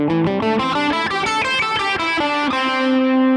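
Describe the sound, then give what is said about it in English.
A distorted electric guitar plays a quick run of plucked notes, then settles on one sustained note, the fifth fret of the third string, that rings out clearly to the end, with no voices. “So instead of just playing, for instance, the fifth fret of the third string here, I'm going to be an A minor pentatonic for our example in this lesson too.”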